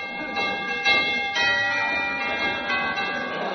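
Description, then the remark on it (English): A doorbell rings with sustained, overlapping chime tones that hang in the air for a few seconds, steady in volume, with no voices. “I'll ring the doorbell.”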